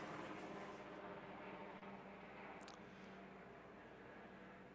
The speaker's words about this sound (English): Well, just wait a moment for the helicopters to go overhead.